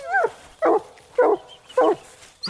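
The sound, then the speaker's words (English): A hound barks steadily at the base of a dead hollow tree in a slow, even rhythm, four or five loud, drawn-out bays about half a second apart, with no talking. “Liza Jane is barking at the base of a dead hollow tree.”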